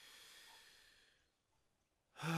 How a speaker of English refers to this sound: And so really it's just closing down, slowing down, tuning in with your breath and just taking a few breaths and just breathing in slowly into your body.